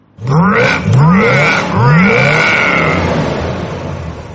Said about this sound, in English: We'd be sitting in the guard stands or doing some odd chores around the pool when the unmistakable rumble of a 340 V8 74 Cuda with headers and glass packs rolled into the pool's circle drive.